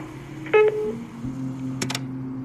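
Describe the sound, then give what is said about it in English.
A short electronic answering machine beep sounds clearly, then a steady low tone hums on under a faint background hiss, broken by a couple of quick mechanical clicks near the end. No one speaks. “Wait for the beep, and have a good day.”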